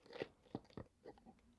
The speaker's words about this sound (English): So, now that my mouth's so dry, let me take a slurp of this Culver's Diet Root Beer.